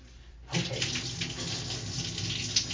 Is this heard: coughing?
no